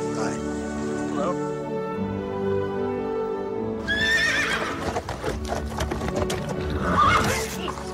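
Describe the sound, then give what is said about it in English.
A horse lets out shrill, wavering whinnies midway and again near the end, while hooves clatter in a quick, uneven clip-clop over a steady low background hum. “The horse is nuts.”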